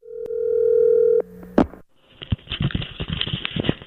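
A steady, buzzing telephone dial tone holds for about a second, then cuts off with a sharp click, followed by crackly, rustling line noise.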